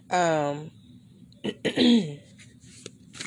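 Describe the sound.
A close, loud throat clearing: one drawn-out voiced rasp, a short pause, then a couple of quick gruff bursts trailing off into a softer rumble.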